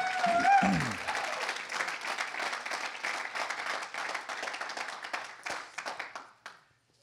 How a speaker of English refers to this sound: Come on, let's give the worship team a round of applause this evening.